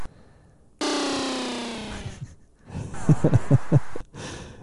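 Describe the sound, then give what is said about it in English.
A video game boss howls: a loud, drawn-out cry sliding down in pitch, followed by a burst of rough, rhythmic grunting pulses and a breathy hiss. “The boss howling.”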